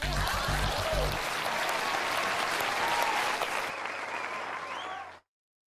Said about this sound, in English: Please clap.